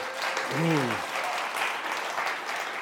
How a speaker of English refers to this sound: So yeah, five souls. So it's beautiful. Let's give that a wee round of applause. Come on.